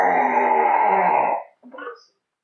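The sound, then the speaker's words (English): A person roaring back at a skeleton lets out a loud, sustained throaty roar for about a second and a half, voice imitating a monster, followed by a short rough growl that trails off into silence. “When the skeleton drops down and roars, I'm going to roar back at it.”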